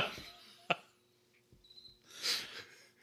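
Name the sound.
cricket chirping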